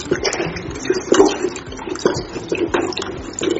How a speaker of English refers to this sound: Okay, so the next thing, we set this aside and we add a little water to our carbolic. So you just add a little water to your carbolic and you add it to the mixture you have on ground already.